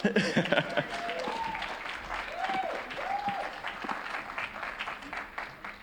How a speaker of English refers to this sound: Thank you, worship team, each and every one of you, for everything that you do to give us a little taste of heaven. Amen. You can give them a clap.